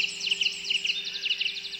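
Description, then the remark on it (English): Songbirds chirping and trilling together in a lively dawn chorus, quick repeated high notes overlapping steadily, with a faint low hum underneath. “Ah, the dawn chorus.”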